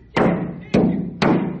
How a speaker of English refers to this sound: Now he's slamming his phone up against the door.